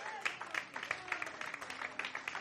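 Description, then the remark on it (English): A standing audience gives the Lord a clap offering, clapping together in a steady, quick rhythm, with many hands striking sharply at once and a faint murmur of voices underneath. “Stand with me and give the Lord a good clap offering.”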